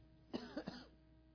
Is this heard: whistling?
no